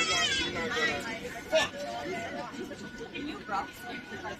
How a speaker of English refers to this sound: because there's a child crying on the flight non f***ing stop. That's what's happening.